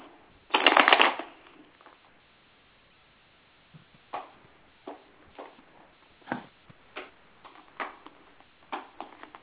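A loud riffle of tarot cards being shuffled at the start, followed by a pause and then a series of soft, irregular card snaps and taps, with no talking.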